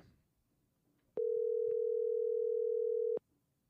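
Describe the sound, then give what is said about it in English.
A steady, loud telephone dial tone holds one unbroken pitch for about two seconds, starting and stopping abruptly over a faint low background murmur. “And the phone lines are open.”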